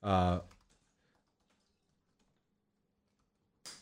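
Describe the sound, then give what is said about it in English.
Soft, scattered keyboard typing clicks tap away quietly after a brief vocal sound at the start, ending with a short hissy burst of noise, as a person types up an improvised exchange. “I love how I'm like typing up what it was.”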